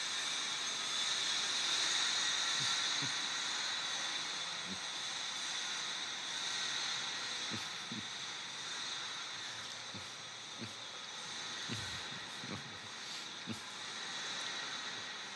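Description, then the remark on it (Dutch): A train rolls past on a nearby railway, a steady loud rushing hiss with high metallic ringing and scattered clanks and thumps from the wheels. No one speaks. “Het ijzeren spoor.”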